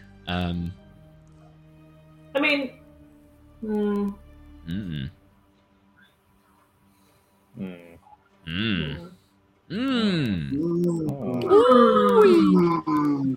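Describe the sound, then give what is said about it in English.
A pet cat yowls in a string of drawn-out, wavering cries, short calls at first, then longer, louder, rising and falling wails that merge together toward the end. “Hear a little bit of it, but while my cat was going skits.”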